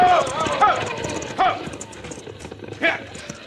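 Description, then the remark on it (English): Stagecoach horses' hooves clop unevenly and slow to a halt as the driver stops them, with a few sharp bursts of noise and indistinct voices in the background. “Now he's stopping them horses.”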